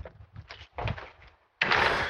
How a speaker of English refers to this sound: Okay, I'm home. I'm locking the door